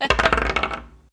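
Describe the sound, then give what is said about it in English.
Dice rolled for a saving throw in a tabletop role-playing game clatter across a hard tabletop and come up a natural 1. A quick burst of sharp, bright clicks bounces rapidly, then skitters and settles into silence within about a second. “You can roll another save here.”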